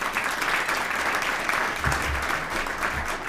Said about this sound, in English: Let's give her a nice round of applause again.